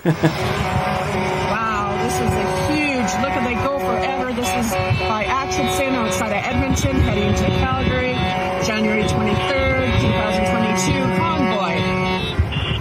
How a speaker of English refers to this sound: Trucks, lots of cars and trucks. Very impressive. Goes on forever.